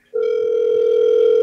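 A steady telephone dial tone starts abruptly and holds at an even, loud pitch with no breaks, heard alone without any voices.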